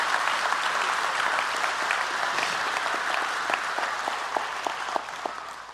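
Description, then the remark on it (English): Sustained audience applause, a dense wash of many hands clapping steadily for several seconds, with a few sharper individual claps standing out near the end as it begins to taper. “Why did you clap?”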